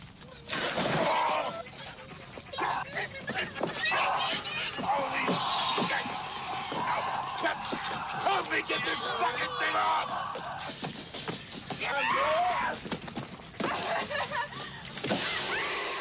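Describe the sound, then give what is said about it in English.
A film sound effect by Jimmy Shields of the android Ash dying: harsh mechanical whirring and grinding mixed with distorted, groan-like tones, loud and continuous throughout, like the machine driving him winding down. “You hear the death of Ash and the winding down, the whatever's driving him.”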